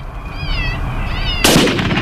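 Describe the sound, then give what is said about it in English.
A coyote hunting call, used to attract coyotes closer, gives two high, wavering squeals like a distressed animal, then a sudden loud, harsh burst cuts in and rings out to the end over a low rumble. “See if I can help you out with a coyote call”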